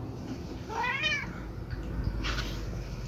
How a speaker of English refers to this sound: Always meowing while I'm trying to record.